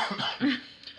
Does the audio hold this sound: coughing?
yes